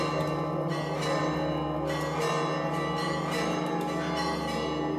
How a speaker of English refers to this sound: The bells are signaling a changing of the guard of sorts. The sepulchre is controlled by 5 different Christian sects, with varying rules for who oversees specific parts of the church. The bells signify it's time for one group to take its watch.